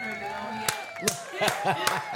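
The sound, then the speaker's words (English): Five sharp hand claps at a slow, steady pace, ringing out clearly over murmuring voices and background chatter. “Slow man. Clap.”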